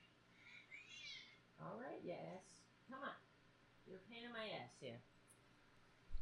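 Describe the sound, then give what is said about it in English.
A cat meows for attention several times, with drawn-out, insistent cries and short pauses between them. “He used to be a kitten once, right?”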